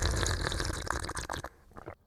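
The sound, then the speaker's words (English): A loud, wet slurp of soup off a spoon, a steady airy sucking lasting about a second and a half, then cutting off into a few faint, brief gulping sounds. “After slurping, of course, I swallow my spoonful of soup.”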